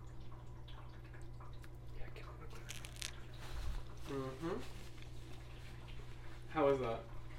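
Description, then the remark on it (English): Soft crunching and squishy bites into a chocolate-dipped treat, a few short crackles over a steady low hum, with brief murmured vocal sounds in between. “Wait, now let me dip it. Oh yeah, you try it first. ASMR.”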